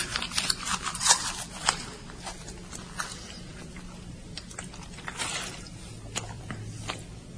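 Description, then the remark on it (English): Moist crackling and crunching of someone chewing torn pages from a book, rolled up like a chaw of tobacco, with irregular bursts of crinkly clicks and soft squishes over several seconds and no talking. “I'll roll them up, you know, into almost like a chaw of tobacco.”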